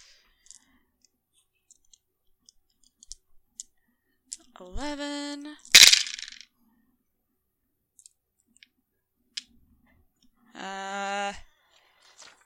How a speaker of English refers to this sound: Wait, no. I mean, I have to roll 11 dice